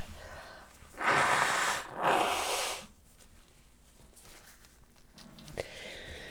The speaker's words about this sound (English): Cover your ears. I'm going to blow my nose.